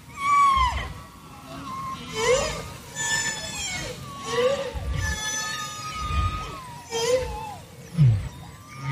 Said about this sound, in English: That's the sound of humpback whales, to which the greetings eventually give way until we hear only the whales.